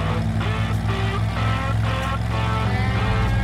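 A car engine starts and accelerates, running loud in a steady low droning rumble with a few rougher surges, filling the whole stretch with no voices.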